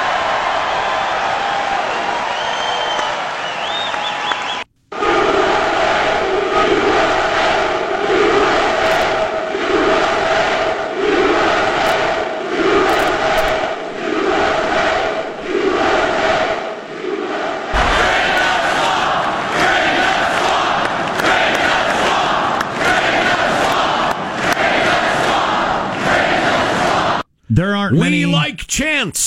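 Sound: crowd chanting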